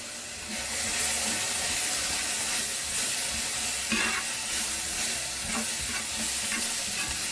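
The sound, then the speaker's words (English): Steady sizzling of vegetables frying in a pan, with scraping and clattering as they are stirred, continuous throughout with no talking. “Vegetables are frying up nice.”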